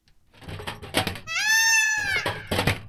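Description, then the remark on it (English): A peacock lets out one loud, piercing, nasal scream that holds for about a second before trailing off, with brief muffled voice-like sounds just before and after it. “So, scissors, scream of peacock, Shakespeare, so far so good?”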